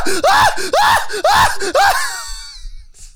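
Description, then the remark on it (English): People scream in loud, rhythmic whoops imitating howler monkeys: about five quick rising-and-falling howls in a row, then a fading breathy tail. “Just a bunch of howler monkey sounds in the fucking screen.”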